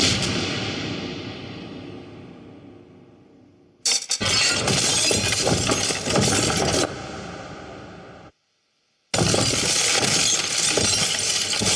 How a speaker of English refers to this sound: Our first version of this was a big stone crashing, big stone crumbling, and you know that sort of thing, because the tower is evidently made of possibly of obsidian or rock. So our first obvious choice was to do it with crumbling stones